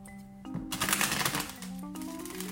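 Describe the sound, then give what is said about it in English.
A brief, crisp riffle of cards being shuffled, lasting about a second, rising over a soft, steady background of sustained music tones. “One more shuffle.”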